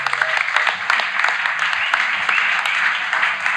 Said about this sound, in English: So let's give Lisa a round of applause.